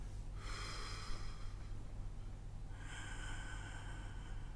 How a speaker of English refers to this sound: So you're also doing abdominal breathing now. Yeah, and that will say a few times today. You want to breathe into the belly so the belly expands, and then as you exhale, you're pulling in on the belly.